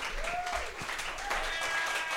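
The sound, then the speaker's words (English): An audience applauding steadily in an extended applause of about 10 seconds, a dense wash of many hands clapping at an even loudness with a faint whistle or cheer rising through it. “Isn't the past year of your personal pain worth that 10-second extended applause?”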